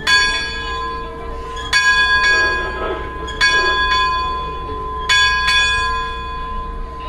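A bell is struck four times in quick paired strokes. Each bright metallic clang leaves a long, humming ring that carries into the next, with a faint background murmur underneath.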